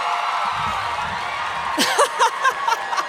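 A live audience in Atlanta cheers in a steady roar of crowd noise, with several loud individual whoops and shouts rising out of it toward the end.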